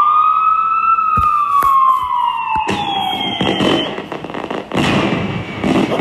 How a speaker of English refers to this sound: Sound like a Chicago birthday. Police and fireworks. The 4th is coming up.